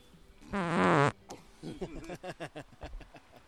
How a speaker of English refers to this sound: A little quick fart.